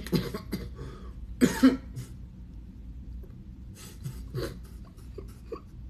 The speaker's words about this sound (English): You see how karma works? You had me over here coughing.